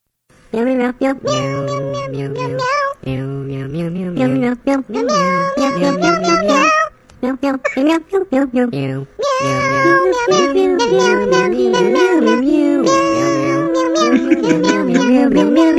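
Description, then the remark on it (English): A loud, nearly continuous run of cat meows strung together into a tune, with pitched, gliding yowls rising and falling over sustained melodic tones, broken by a few brief pauses. “Here are the SWIC cats in another round of whatever they're going to treat us to here.”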